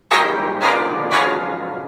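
A church bell tolls three times in steady succession, each loud, bright strike ringing on and overlapping the next, with a long resonant hum underneath and no voices.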